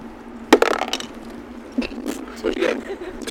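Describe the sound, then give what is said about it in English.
A die clatters onto a hard table with a sharp first hit, then a few lighter rattling clicks as it tumbles and settles on a 15, over a faint background hum. “I just pretty much give off a bird call and roll a dice, and depending on how high it is, that's like from like they just hear it like the fuck, or they just drop like out cold asleep.”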